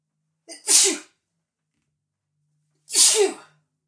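Two sharp sneezes, each preceded by a brief intake of breath, roughly two seconds apart, close and fairly loud with silence between them.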